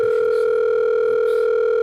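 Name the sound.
telephone dial tone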